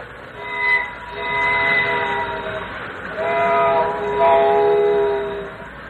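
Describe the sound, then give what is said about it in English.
A train rumbles past very fast with steady rail noise, its horn sounding in long sustained tones that rise and shift as it goes by, fairly loud, with no voices. “He went by so very, very fast.”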